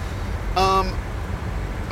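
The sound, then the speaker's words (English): A steady, low engine hum fills the cabin of a small blue Toyota pickup truck nicknamed Roosevelt, constant, with a brief tonal voice-like sound rising over it for a moment early on. “I'm in my little truck. It's a blue Toyota truck, small, tiny little guy.”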